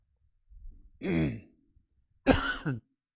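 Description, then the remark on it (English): During a sermon, a throaty, rasping throat clearing is followed about a second later by a sharp, harsh cough, both fairly loud, with quiet moments around them and no talking. “And having to cough during your sermon.”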